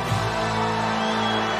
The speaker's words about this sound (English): These two WWF superstars. And these people are standing and cheering for the effort, for the desire, for what they have just seen from two phenomenal athletes.